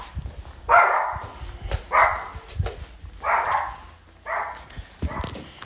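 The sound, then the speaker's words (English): A dog barks four times in a steady, evenly spaced rhythm, each bark loud, with a faint background hum between them and no talking. “Dog is barking.”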